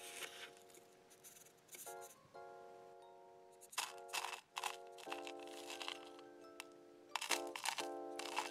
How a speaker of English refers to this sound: Now place the paper filter inside the cone. Now grab a spoon and pour in your desired amount of coffee.